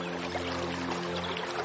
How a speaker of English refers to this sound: Water flowed through a system of canals. To direct the water to where it was needed, they used locks and counterweighted buckets.